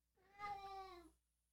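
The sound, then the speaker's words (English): A single drawn-out meow from a sick cat, about a second long, that slides downward in pitch at the end. It stands alone against a quiet background, with no talking. “It's my sick cat.”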